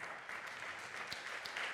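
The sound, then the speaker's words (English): An audience applauding in praise of Jesus Christ, a steady, dense wash of many hands clapping at once with no pauses, holding an even, fairly loud level throughout with no voices standing out. “We should clap because of who he is.”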